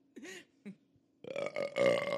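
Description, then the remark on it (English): A couple of short throaty gulps, then a loud, drawn-out burp from a person rumbling for nearly a second, with no talking over it. “All my burps taste like sushi.”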